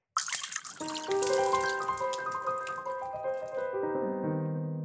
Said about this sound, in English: You're pouring out the martinis. We're pouring out martinis in front of the bartender who made them.